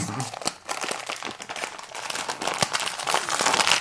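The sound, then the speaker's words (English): Crinkly plastic bag of Bean Boozled jelly beans being opened, rustling and crackling steadily for several seconds, dense bursts of sharp crinkles and crunches with no pauses and no voices. “Anyway, now that we have that, back to opening Bean Boozled. All right, are you ready? You want to open that up?”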